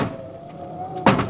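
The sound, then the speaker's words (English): A door creaks open with a thin, steady squeal, then a sudden loud whoosh of wind rushes in through the open door over the last quarter second. “Close that door before we get blown out of here.”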